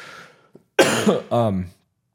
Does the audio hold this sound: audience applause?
no